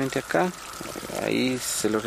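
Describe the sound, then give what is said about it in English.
Water pours and flows steadily into a small algae-covered irrigation reservoir pond on a farm, which feeds its vegetable crops, a continuous rushing sound, while a person talks over it for most of the moment. “The water always comes in here, and it is stored there.”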